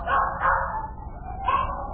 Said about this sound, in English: Where'd all them dogs get in my car? What's all them dogs doing in my car?